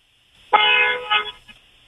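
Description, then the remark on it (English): A single loud car horn blast of about one second, steady and harmonic, with a slight dip near the end and a faint echo trailing off, honked from a parked car in a building's parking structure. “And it's going to be funny because they're going to be like, why is she honking? Okay. Go ahead, lay the horn down.”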